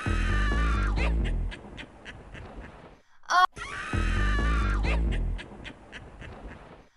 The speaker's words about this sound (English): Originally, I saw that the worm screams were just electronically modified screeches of pigs in a slaughterhouse,